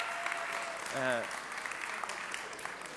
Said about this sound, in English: Yeah, hey, give those guys who did that a big round of applause. Just stunning.